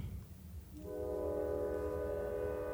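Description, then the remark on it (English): A train horn blares in a long, steady chord over the low rumble of a passing train, starting a moment in and holding loud to the end, with no talking. “Train, you can probably hear it.”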